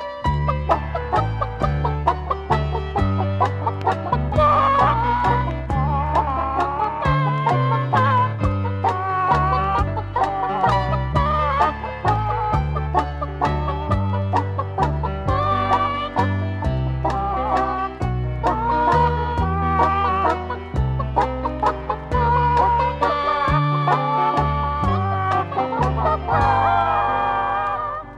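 A novelty song built from clucking chickens, the rapid clucks and squawks arranged into a bouncy, continuous melody over a steady backing, loud throughout with no talking.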